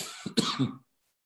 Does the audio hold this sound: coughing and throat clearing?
yes